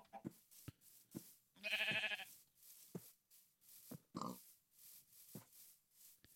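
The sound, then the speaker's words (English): A video game sheep lets out one loud, wavering bleat, followed a couple of seconds later by a shorter bleat, with soft tapping footstep-like clicks scattered around them and no talking. “I'm going to kill that sheep.”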